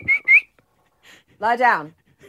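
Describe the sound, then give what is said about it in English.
Two quick, high whistle chirps, then a pause before a person gives a single drawn-out, throaty bark, a voice imitating a dog, whistled and barked into a phone, with a faint murmur trailing after. “We went to a song, and then during the song, you picked up your phone, and then you started barking and whistling into your phone.”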